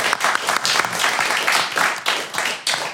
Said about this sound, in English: We represent Toys for Bots. Ladies and gentlemen, a round of applause for Toys for Bots.